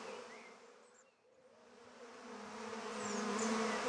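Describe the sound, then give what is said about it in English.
A steady, droning buzz of bees, dipping briefly after the first second, then swelling louder and fuller toward the end. No voices, only the continuous insect hum. “I have discovered that the bees are now definitely suspicious.”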